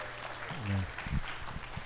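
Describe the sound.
An audience claps for a testimony speaker in a dense, steady patter of applause that holds at an even level throughout, with a short rising voice-like tone cutting through partway.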